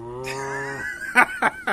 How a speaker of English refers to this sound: Could you shut those cows up?